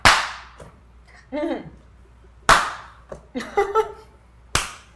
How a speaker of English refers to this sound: You see Virgo is above you. Her hand is in the air. She's about to slap you again.